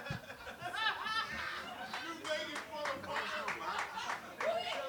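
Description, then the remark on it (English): A crowd claps steadily for the full five seconds, dense sharp hand claps mixed with scattered laughter, chuckles and voices talking over the applause. “It feels weird that you clap the Fallout 76.”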